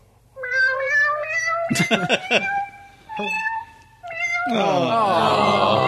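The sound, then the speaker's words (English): A cat piano app on a phone plays a run of electronic cat meows pitched as musical notes, one after another like a little keyboard tune, loud, ending in a longer, wavering yowl. “But Fake Keith took great delight in my cat piano app on my phone, so...”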